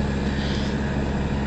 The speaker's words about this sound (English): And this truck is really testing my patience.